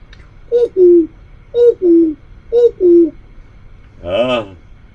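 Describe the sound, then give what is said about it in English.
A voice imitates a big clock ticking with three paired, sing-song tick-tock syllables in a steady rhythm, clear, followed by a short voiced exclamation. “The clock, the big clock was ticking.”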